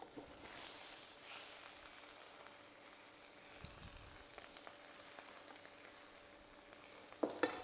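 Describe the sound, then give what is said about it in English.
Potatoes being mashed with butter and milk: a steady, soft, wet squishing and crackling that runs throughout, ending with a couple of sharper clacks. No one speaks. “Now we've mashed them a little bit, so it's time to put a little bit of butter in them and a tiny splash of milk, but not too much. Let's mash this all together.”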